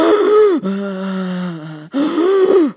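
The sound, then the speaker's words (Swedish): A person imitates labored, constricted breathing: strained, wheezing gasps in and out, three drawn-out breaths with a raspy, tight quality, loud with no talking. “När man är där så andas man så här.”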